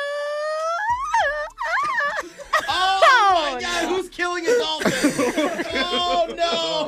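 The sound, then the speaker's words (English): A person imitates a crying baby with high, wavering wails that rise and break into sobbing bursts, while others chuckle and snicker in the background. “Why would you ever need to believably cry like an actual baby?”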